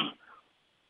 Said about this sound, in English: Cough gets to me sometimes.